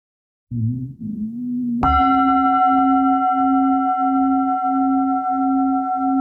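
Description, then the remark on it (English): A single meditation bell is struck once and rings out with a clear, steady mid-pitched tone that sustains for several seconds, faintly pulsing, after a soft low sound just before the strike. “And then again, when you hear the bell, just enjoy the sound of the bell and let the contemplation go.”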